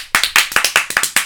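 round of applause

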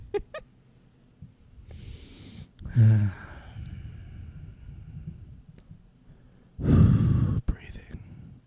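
heavy mouth breathing

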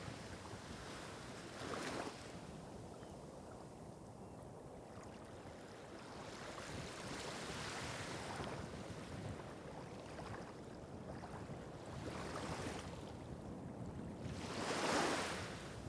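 ocean waves and surf

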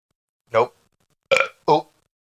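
burp

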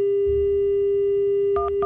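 telephone dialing tones

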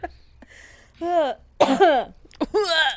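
cough

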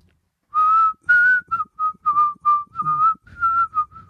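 person whistling a tune

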